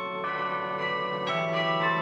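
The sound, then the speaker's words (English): Carillon bells ring out in a steady sequence, a new note struck roughly every half second, with rich sustained tones overlapping and ringing on. Moderately loud, with no voices. “There are Carillions all over the world.”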